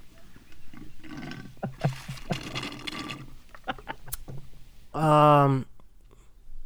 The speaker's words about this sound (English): Wait, let me take my one last sip. Let me just.